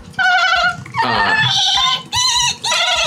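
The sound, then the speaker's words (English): Two voices imitating dolphin-esque clicks: a run of loud, high, squeaky bleats and whines in quick succession, several overlapping, with brief gaps between bursts and no spoken words. “Something went wrong, and instead they're dolphin-esque clicks that I can't do, but fortunately you two did an amazing job on.”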